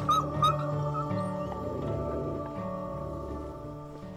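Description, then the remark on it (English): Wolves at Dublin Zoo, a family group, howl together at night in a chorus of long, sustained, overlapping tones at several steady pitches, with a few brief higher yips at the start. No one speaks. “They live in family groups of up to 12 animals, howling together, and it establishes cohesion.”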